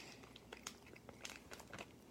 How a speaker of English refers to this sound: So these are a little bit tougher to chew, actually. So these might be on the old side.